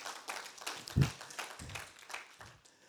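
A crowd claps together in a steady burst of applause for people at the back who used to be from Tamworth, many hands overlapping into a dense, crackling patter with a few louder low thumps rising above it.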